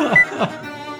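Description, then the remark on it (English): Electronic beeping: a short, thin high-pitched beep among a couple of falling chirps, then a steady, faint electronic tone that lingers to the end. “You hear a beeping.”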